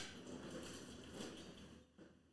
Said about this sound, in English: Nice. Anyone that's listening, that's a trash truck. I'm going to leave it in. I'm not going to edit it because I don't feel like editing it. So enjoy the trash truck. It's not as loud on this end.